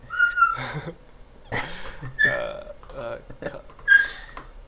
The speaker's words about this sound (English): My dog is crying at me.